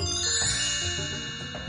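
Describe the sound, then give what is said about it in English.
A short, bright listener-mail chime jingle rings out for under two seconds, with sustained, shimmering tones at a steady moderate level and no talking over it. “Well, let's do the listener mail chime.”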